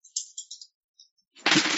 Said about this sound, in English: All right, rolling 2d10. Let's get the ones. I'm looking for snake eyes this time.